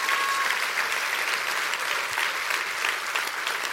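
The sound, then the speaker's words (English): An audience claps their hands in a sustained, dense wash of applause, many overlapping claps blending into a steady crackling roar that holds at an even level throughout. “Come on, clap your hands to that.”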